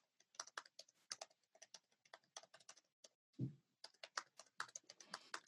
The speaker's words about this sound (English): Yeah, you hear that type. Yeah, that gamer keyboard. No, it's actually a MacBook Pro.